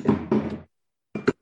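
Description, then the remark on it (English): Someone knocks stuff down: two heavy clattering thuds in quick succession, a short silence, then two sharper bumps close together. The impacts are fairly loud, with no talking. “I'm knocking stuff down.”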